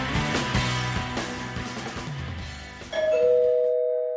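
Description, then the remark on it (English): Rhythmic background music plays, then cuts away as a loud two-note doorbell rings out, a higher chime followed by a lower one, each tone sustaining and slowly fading. “Someone's at the door.”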